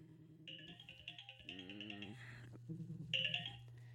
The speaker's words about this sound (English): Sorry, guys, I didn't put my phone on silent.